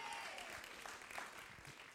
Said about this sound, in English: Give our brother Joel a hand clap. Come on. Yeah.